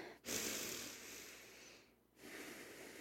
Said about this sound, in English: So your hands are going to be the elastic pushing in. And then you're going to take a deep breath.